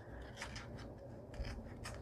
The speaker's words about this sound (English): Now I'm going to have to come in there with some scissors and snip this off. Don't cut the backing.